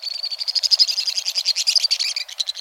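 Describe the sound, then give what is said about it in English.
A pair of white-throated swifts careens by at high speed in a canyon, giving a torrent of shrill, high-pitched twittering trills that ricochet off sheer stone walls, rapid pulsing notes running together almost nonstop, fairly loud, with no voices present. “A torrent of shrill notes ricochets off the sheer stone walls of the Western Canyon.”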